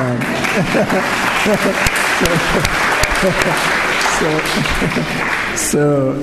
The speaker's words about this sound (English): And so the book is already being disseminated to policymakers. Why don't you clap to that?